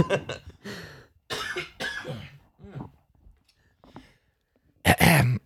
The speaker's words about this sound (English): Sorry, guys. I've been fighting a little bit of a cough and trying not to get sick. I don't think I'm sick yet, but about choked on my own saliva there, I think.